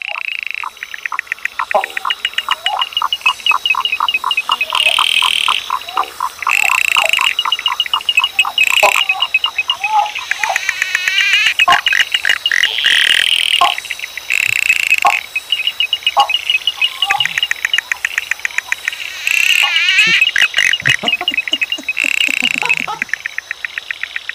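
A dense chorus of frogs calls continuously, with rapid ticking, clicking pulses and bright chirps layered over one another, loud and close, occasional higher trills cutting through throughout.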